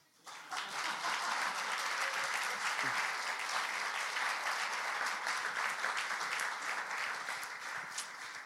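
A crowd bursts into applause, a dense, steady wash of many hands clapping that holds at full strength for about eight seconds before easing slightly at the end.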